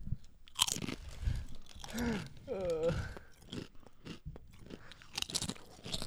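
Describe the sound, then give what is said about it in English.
A bag of Tapatio-flavored Doritos chips is opened and eaten: the bag crinkles and rustles in irregular bursts while chips are crunched and chewed, the sharp crackles coming in uneven clusters with a brief whiny, tonal sound in the middle. “opening a bag of chips, fatly.”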